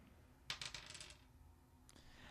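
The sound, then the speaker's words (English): A small burst of dice clattering across a hard table during a game, a quick run of rattling clicks that dies away, then one more faint tap shortly after; the roll comes up a six. No one speaks. “That is another six. What the hell? Ask Anna if these dice are weighted.”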